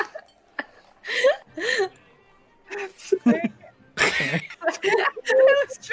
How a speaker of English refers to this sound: This is a very loud burp.